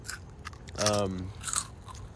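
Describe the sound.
Crunching on crispy seafood-flavored snack chips, a few sharp crackly bites spread across the moment, with a brief voiced hum in the middle.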